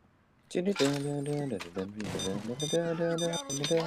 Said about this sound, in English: I'm gonna stop from hitting the alarm, actually. Oh, damn. They hit the alarm.